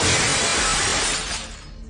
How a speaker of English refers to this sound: It got louder and louder until they heard the mirrors shatter in unison.